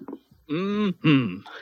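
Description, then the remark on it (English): Two loud, drawn-out voiced yawns in quick succession, each a rising-and-falling moan lasting about half a second, with a brief murmur before them. “I probably should have gone, yawn! Yawn!”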